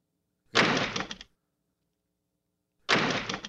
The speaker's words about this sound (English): Okay, let's do a janitor's door.